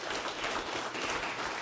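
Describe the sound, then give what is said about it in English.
An audience applauds mothers on Mother's Day, a dense, steady wash of many hands clapping at once, even in loudness throughout, with no voices standing out above it. “Moms, we applaud you.”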